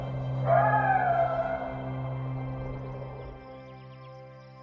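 Coyotes howl from a distance, a few overlapping high, wavering wails that swell and then fade over about three seconds, over a steady low background hum.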